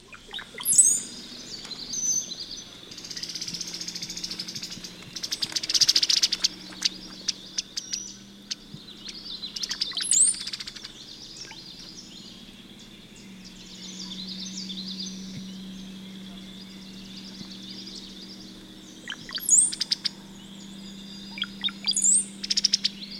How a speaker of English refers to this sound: Tonight for our profile, we're going to talk about the brown-headed cowbird. It's a member of the family of blackbirds, grackles, and orioles. Let's listen to the bubbly gurgles and rattle of the brown-headed cowbird.